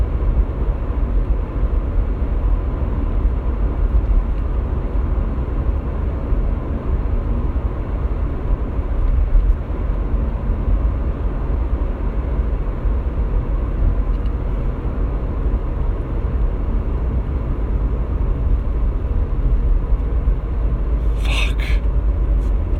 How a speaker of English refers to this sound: More fucking traffic.